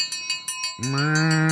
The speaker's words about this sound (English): Give it a cowbell.